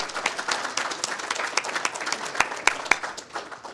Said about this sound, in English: So I want to give her a round of applause.